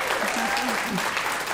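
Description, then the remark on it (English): A crowd applauds steadily, a dense wash of clapping from many hands, with faint voices calling out beneath it throughout. “that's worth cheering.”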